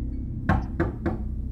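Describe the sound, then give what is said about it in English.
Three firm knocks on a door in quick, even succession, each a dull, solid rap over a low steady background hum, with no voices. “If there's a knock at the door, ignore it.”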